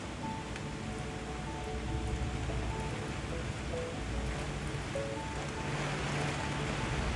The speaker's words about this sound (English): For a little while, I stood and just watched it. Then it started invading my apartment. Now, it's an intense, amazing storm.